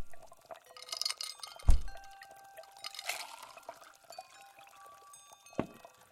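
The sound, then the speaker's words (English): Water pours into a glass, a steady trickling gurgle that rises in pitch as it fills, with a couple of soft glassy knocks before and after. “Could I please have a glass of water instead?”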